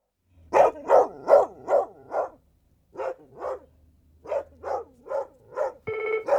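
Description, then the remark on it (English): A dog barks repeatedly in quick, evenly spaced bursts, a run of five, a brief pause, then several more, clear, followed by a short steady electronic tone at the end. “Well, it's the dog groomer from Colorado phoning up to complain about the dog noise we haven't put in yet”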